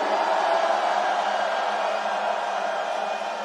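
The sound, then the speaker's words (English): A large festival crowd, told to scream on a count of three, screams together in one dense, sustained roar that holds steady for several seconds before easing slightly at the end, with no single voice standing out. “On the count of three, I want everyone to scream.”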